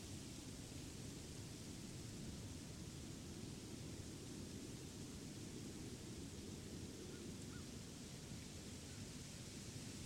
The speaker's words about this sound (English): But in this sanctuary, you stand sheltered and dry amidst the storm's tumultuous downpour.